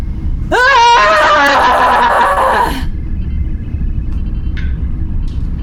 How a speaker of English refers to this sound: Your wounds, only thing keeping you standing right now is the adrenaline that demands a war cry so that the Black Fleet can know that one day you will be among them. This Klingon, no. There's a scream coming, anyone who's listening.